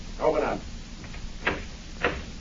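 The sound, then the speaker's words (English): A back door being opened: a brief muffled rattle, then two sharp, distinct clunks of the latch and frame about half a second apart, against a quiet room hum. “The back door.”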